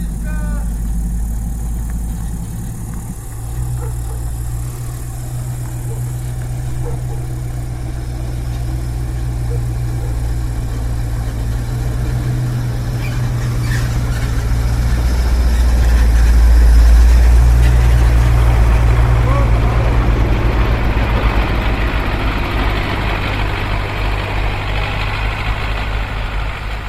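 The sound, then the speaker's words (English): A truck engine rumbles steadily as the truck goes around allotments selling peat and manure fertilizer, idling and then revving up as it pulls away, its deep low drone swelling midway before settling back down. “With a truck going around the dashes and allotments, selling peat and manure fertilizer.”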